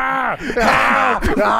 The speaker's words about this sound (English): Lights out the matches and sets JR on fire. And JR is engulfed. And Austin says, fuck you. Jim Ross is on fire. Fuck you, Kane. I bet you won't do it again. You won't get on fire. You sick son of a bitch. JR is screaming.